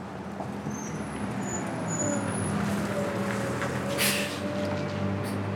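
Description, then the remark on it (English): A long blue city bus rumbles in, its deep engine drone steady, then a sharp hiss of air brakes bursts out as it pulls up to the stop. “A long blue bus pulls up.”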